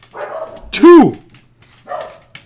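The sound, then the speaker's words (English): A single loud dog bark with a drawn-out, yowling tone cuts in briefly, with muffled voices talking quietly before and after it. “We got 2 of dogs who don't know when to shut the fuck up.”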